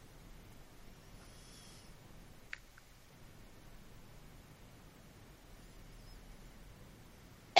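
A sudden, loud sneeze bursts out at the very end after several seconds of quiet background hiss, with a faint click partway through.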